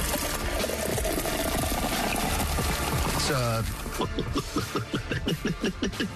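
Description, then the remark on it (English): Beer pours steadily and noisily from a beer tap into a glass for a few seconds, then slows to a trickle with rising gurgles and a series of short glugging pulses at the end. “No, that's a beer tap.”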